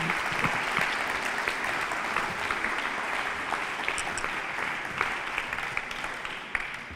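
An audience at a science slam claps steadily for a speaker who has just left the stage, a dense, even wash of many hands that holds at a constant level for several seconds, with no voices over it.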